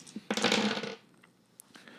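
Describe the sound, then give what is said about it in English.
A quick clatter of four dice, two regular dice and two hunger dice, tumbling across a hard surface, a busy burst lasting about half a second, followed by a few faint ticks as they settle. No voices. “Sorry, do roll it with hunger dice because you're still feeding.”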